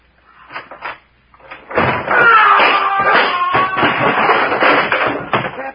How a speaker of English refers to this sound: You ready? Go on, open the door and get it over with.